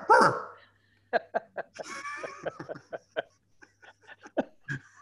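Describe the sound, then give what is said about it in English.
A man imitates a barking dog as the answer to a knock-knock joke, with a loud opening yelp followed by a rapid, uneven string of short, sharp woofs and yips. “I'm a dog. Try it. Knock-knock.”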